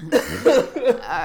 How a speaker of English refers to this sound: Oh, what's wrong, baby? Oh, sweet. Oh my god. She just has a little cough.